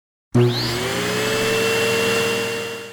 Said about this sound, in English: Some people have a robot that vacuums their house.